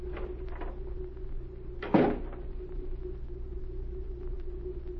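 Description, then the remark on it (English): A single door thuds shut partway through, a short, fairly loud knock against a steady low mechanical hum that runs throughout. No one speaks. “as Agent Z carefully studied the papers from the Colonel's desk, the door opened again”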